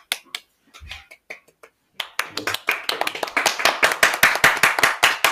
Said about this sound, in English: All my friends make fun of me because I have such a loud clap.